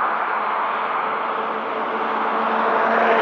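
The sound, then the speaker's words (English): A steady, dense roar of heavy road traffic rushing past a sidewalk, continuous and fairly loud throughout with no distinct breaks between vehicles, and no one speaking. “This is an amazingly high amount of traffic.”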